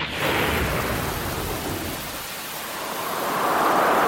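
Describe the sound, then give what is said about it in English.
A thunderstorm roars with steady, heavy rain and a deep rolling rumble of thunder, loud, the downpour swelling again toward the end with no voices. “Storms are Australia's most costly natural disaster.”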